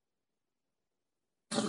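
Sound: sneeze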